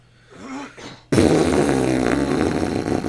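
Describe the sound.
A quiet, wavering low fart noise gives way to a loud, sustained, raspy flatulent blast that runs for about two seconds, dense, with no talking.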